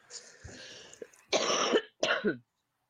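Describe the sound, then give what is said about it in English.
A person clears their throat roughly, then lets out two loud, harsh coughs in quick succession before going quiet, coughing while on a parasite cleanse. No speech. “Listen, I've been coughing a lot more on this parasite cleanse.”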